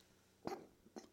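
A quick, fairly quiet sneeze: a sharp breathy burst followed a moment later by a second shorter puff, heard on its own with no talking.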